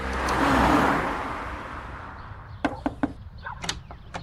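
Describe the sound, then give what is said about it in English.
A rented car's engine rumbles loudly and gradually fades, followed by a series of sharp clunks and knocks, like a car door and latch being handled. No one speaks. “He clutched the tiny piece of paper and climbed in his rented car.”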